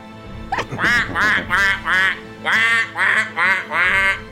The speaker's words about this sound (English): You can hear them. They keep blowing them duck whistles.